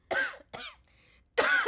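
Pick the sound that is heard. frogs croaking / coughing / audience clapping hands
coughing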